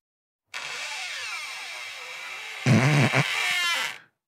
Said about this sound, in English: Scary sound effects. Emma, do we have these ready to go? Yeah. Okay. First up, creaking door.